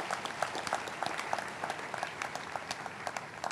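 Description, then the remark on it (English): An audience claps together for Jesus Christ in a steady, dense patter of many hands, sustained throughout without voices standing out, at a moderate, even loudness. “Shall we clap for wonderful Jesus Christ?”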